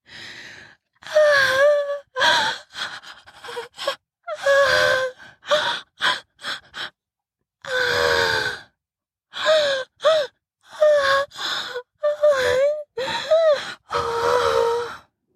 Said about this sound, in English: screamed and gasped for air.